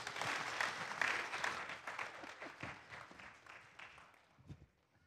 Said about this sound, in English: Thanks, kids. Appreciate you sharing with us. This was fun. Give them a round of applause here.